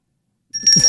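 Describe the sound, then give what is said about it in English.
After a moment of silence, a small hand bell, the Samish bell, rings out with a bright, high, metallic tone that lingers briefly, with some low muffled rustling underneath. “Buy a little bell to ring to alert that you clever innuendos.”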